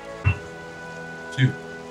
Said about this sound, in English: The rain does fade.